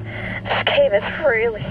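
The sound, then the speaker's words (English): Heavy, ragged breathing of a diver in a narrow underwater cave, a few strained breaths in quick succession with faint voiced gasps catching on the exhales, fairly loud and without any clear words. “Your breathing is starting to get pretty heavy.”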